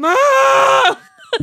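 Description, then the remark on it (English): A person imitates a goat, letting out one loud, drawn-out, wavering bleat, followed by a brief pause and a few short vocal sounds. “But I did have the goats that would go...”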